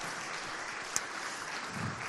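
Steady applause from a church audience, a dense wash of many hands clapping at moderate volume throughout, with one sharper clap standing out near the middle.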